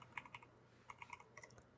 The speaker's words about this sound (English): I can hear you typing.